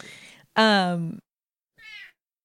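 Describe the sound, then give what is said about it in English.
A cat named Monstro meows loudly, a long drawn-out cry followed after a short pause by a second, shorter and fainter meow, with a brief breathy sound just before. “Cat Monstro is really trying to get us to wrap this up, too, I guess.”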